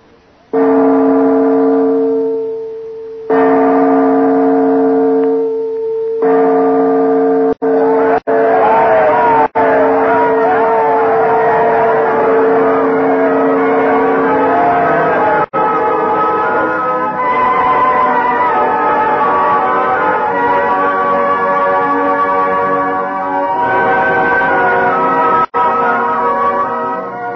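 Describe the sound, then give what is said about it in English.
A large bell, newly in place in the State House belfry, tolls loudly several times as a signal, each deep stroke ringing out with a long, humming decay, before the peals blur together into a dense, continuous wash of sound. “Oh, they're making signals from the belfry. The bell must be in place.”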